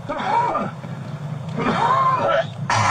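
Two drawn-out, exaggerated cartoonish coughs from a man being arrested, coughing at police officers, each a loud, strained, groaning burst, with background noise between them and a brief rush of noise at the end.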